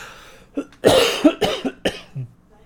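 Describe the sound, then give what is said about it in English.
A fit of harsh coughing from someone who is not feeling well: several rough bursts in quick succession, loud and chesty, with no talking in between. “And I'm going to continue coughing up a storm because I'm not feeling well.”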